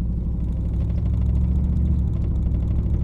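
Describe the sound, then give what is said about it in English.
A maroon 1998 Ford pickup truck engine hums steadily as it drives across a bridge at Cedar Creek Lake in Lincoln County on a sunny 50-degree January day. A continuous low rumble with road whir and no voices, holding an even loudness throughout. “drives a maroon 1998 Ford pickup truck across a bridge at Cedar Creek Lake.”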